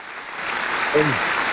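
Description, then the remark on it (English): Steady, dense applause from a crowd congratulating a couple on the birth of a baby boy fills the whole moment, a continuous hiss of many clapping hands, with a brief voiced whoop rising out of it partway through. “Hit him with a couple of claps.”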